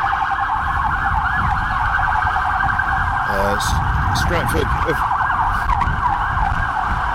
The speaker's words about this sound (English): Stratford, of course, famous for having ice cream vans with the worst musical tones ever.